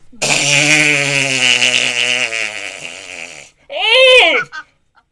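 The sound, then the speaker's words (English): A person blows a loud fart noise with their voice: a long, buzzing, wavering raspberry lasting a few seconds, then a shorter rising-and-falling one after a brief pause. “It's where the kids can fart on the bus or make fart noises on the bus.”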